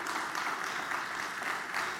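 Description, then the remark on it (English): Steady, dense applause from a crowd for the ministers, a continuous wash of many hands clapping at a fairly even level with no voices standing out. “So if we could give a round of applause to our ministers”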